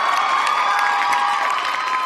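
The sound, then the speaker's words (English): A crowd cheers and whoops over steady applause, a dense, loud wash of voices and clapping that holds throughout with no pauses. “I need a hand clap for that one.”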